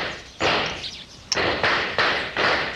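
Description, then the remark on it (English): Several gunshots ring out in an irregular series from down in a valley, each a sharp crack followed by a long echoing tail. No one speaks. “There's a noise that ought to be familiar to you. Gunshots.”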